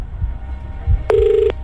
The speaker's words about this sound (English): if they awake and answer their phone within 5 rings